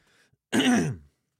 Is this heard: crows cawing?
no